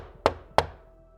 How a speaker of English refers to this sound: while you're rehearsing and going over the screenplay that you're reading, there's a knock at your door.